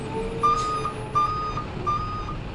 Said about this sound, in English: That truck is not going to make it past those cars. Yes, it is. Look, that truck is what, 2 meters from the cars? And the truck weighs, I don't know, 7 tons?